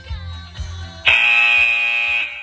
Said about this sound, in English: Now, we've only got another 8 seconds to go before we need to pick up and get that run number 4 done. So ready and wait for that buzzer to go.